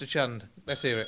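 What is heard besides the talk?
quiz buzzer sound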